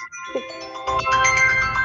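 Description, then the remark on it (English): A phone ringtone chimes out a bright, tinkling melody that swells louder partway through, ringing clearly with a steady rhythmic beat underneath. “I thought my phone was on vibrate.”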